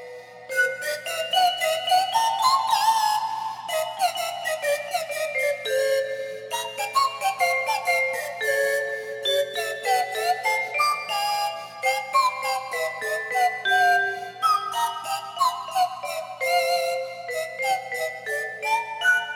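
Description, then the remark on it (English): A slide whistle, played playfully in a goofy song, swoops up and down through a silly, meandering melody for the whole stretch, bright and fairly loud over a light musical backing, with no voices. “You know, it's a slide whistle and it's him screwing around.”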